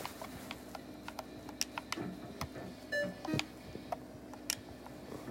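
A checkout scanner beeps once, a short, steady electronic tone partway through, over a low hum and scattered sharp clicks and clatter. No one speaks.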